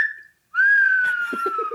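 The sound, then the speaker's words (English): A person whistles two sustained, steady tones imitating a bird call, separated by a brief pause, loud, with faint murmuring voices underneath near the end. “you are not a good bird call.”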